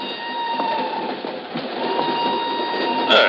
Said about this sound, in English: An hour later, she's aboard a northbound train rolling out of Lisbon. I'm in the same car a few seats away.